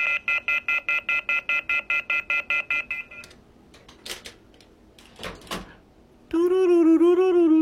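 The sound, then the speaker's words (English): A telephone being dialed: about a dozen quick, evenly spaced beeping tones, then some clicks and rustling, and finally a loud, steady electronic tone with a slight waver. No one speaks. “I'm going to be using this phone next week a lot.”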